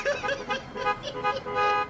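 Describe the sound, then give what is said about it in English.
A car horn blares in a quick run of repeated honks, bright and harmonic, with short pulses running together over about two seconds, fairly loud throughout. “Hey, can I get a honk?”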